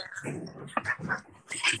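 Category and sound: animal, dog whimpering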